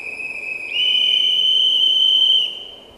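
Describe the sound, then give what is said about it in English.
A shrill whistle, blown by activists in the woods of the Jackson Demonstration State Forest where logging continues, sounds in one long sustained tone that swells louder partway through and then eases off, with a faint hiss of background noise beneath and no talking. “But quite a few activists now have come into the woods with whistles and hollering.”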